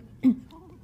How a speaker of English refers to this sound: Let me have a sip of tea.